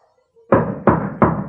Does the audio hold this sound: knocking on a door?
yes